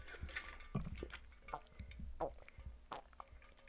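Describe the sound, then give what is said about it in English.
Wet sipping of water through a straw from a container with its cap on, a series of irregular slurps and small squishy gulps over a few seconds, with no talking. “I put the cap on this time. Drank from the straw.”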